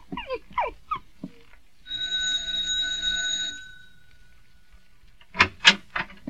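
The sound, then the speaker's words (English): The doorbell of the neighboring apartment gives one steady, buzzing ring lasting nearly two seconds, set between brief bursts of talking before and after. “We'll ring the bell of the neighbor next door.”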